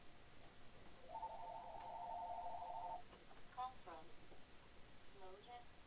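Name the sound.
telephone ringing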